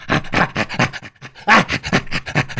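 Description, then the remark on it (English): Chimpanzee play panting: a rapid run of breathy, rasping pants in a steady rhythm, fairly loud, with one brief pause midway before the panting resumes. “And according to Provine, we inherited that signal from our chimp relatives. Yeah, so basically, panting became ha-ha.”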